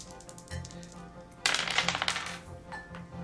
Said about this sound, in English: I didn't even see those. You hit the other dice.